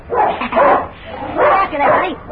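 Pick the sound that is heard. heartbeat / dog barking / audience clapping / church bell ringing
dog barking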